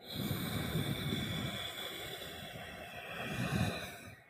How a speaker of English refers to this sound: Okay, so I'm going to try this. Here we go. We're going to breathe in through the nose. And we're going to exhale through the nose.